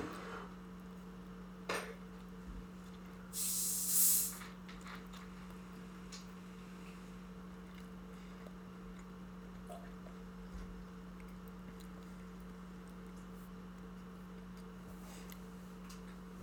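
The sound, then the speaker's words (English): A short burst of liquid as a Jack and Coke is poured, about a 50-50 pour, with a few light clinks of glassware and utensils before and after, set against a steady low electrical hum. No one speaks. “What is that, about a 50-50 pour?”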